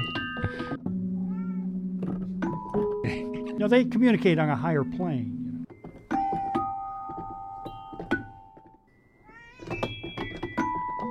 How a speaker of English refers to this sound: John Cage-esque. Oh, she was a big fan of John Cage. I love how it sounds she like didn't she's like purring.